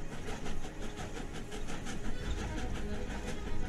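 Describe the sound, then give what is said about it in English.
An afternoon commuter train rolls steadily along the rails, its wheels clattering in a regular rhythmic beat over a low rumbling engine drone, with no voices. “The commuter's train, which every afternoon deposits him safely and soundly here in Crispin.”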